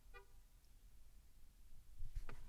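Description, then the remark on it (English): Cars honk outside while the listener sits in a car: a brief, bright car horn toot sounds at the start over a low traffic rumble, followed later by a couple of short, rough bursts. No one speaks. “Those are fucking cars honking. Those are cars honking because I'm sitting in a car.”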